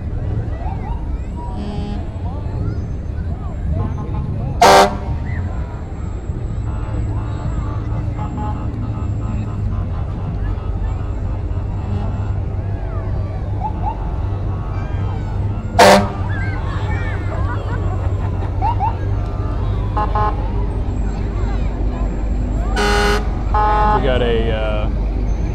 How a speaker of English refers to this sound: Just had a bunch of different classic cars and trucks, SUV here, making its way through.